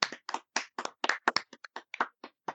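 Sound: hand clapping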